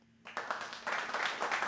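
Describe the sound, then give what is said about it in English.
A crowd breaks into applause after a quiet start, a dense wash of many hands clapping at once that swells and stays loud, with faint cheering mixed in. “Stop with your applause.”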